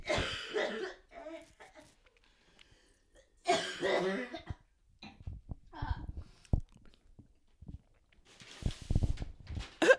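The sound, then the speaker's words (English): A person coughs repeatedly in harsh, ragged bursts, several hacking coughs spread across the moment with brief pauses and throat clearing between them, fairly loud. “No, because fun fact, if I cough too much, like way too much, that can happen.”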